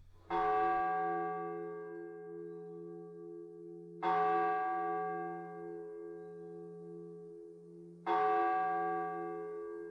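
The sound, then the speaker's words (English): A church bell tolls three times at slow, even intervals, each deep strike ringing out with rich overtones and a long, lingering decay. No voices are present. “let the bell tolls, Benny, for the great Doc Holliday”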